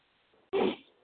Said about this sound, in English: I don't know why I'm hacking and coughing. It tickled me. Maybe I just drank my coffee down the wrong tube, maybe. I was just snorking my coffee down the wrong pipe.